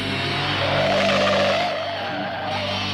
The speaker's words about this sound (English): Hey, guys, there's a car coming.